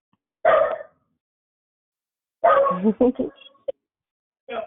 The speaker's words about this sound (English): Somebody got a puppy dog that's saying good morning, too.